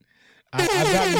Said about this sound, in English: I've gotten a lot of positive feedbacks from our air horns.